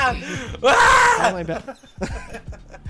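A person lets out a loud, strained scream lasting under a second, followed by some softer vocal sounds and breathy noises.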